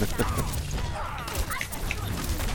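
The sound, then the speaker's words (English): Chaotic video game combat with a steady barrage of explosions, thuds and crashing impacts piling on top of each other, loud and continuous, with faint voices buried in the din. “It's just explosions and particle effects and people...”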